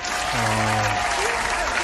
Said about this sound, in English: All right, let's give this woman a round of applause for her vocals.